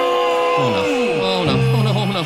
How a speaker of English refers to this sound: The crowd is upset. He's sick. They're here for a rock concert, but it's just me here, and I'm not a rock star.